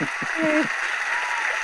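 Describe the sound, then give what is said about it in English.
A steady wash of applause runs through the whole short stretch, with a brief voiced cheer rising over it early on before the clapping carries on alone at an even level. “Insert applause right here.”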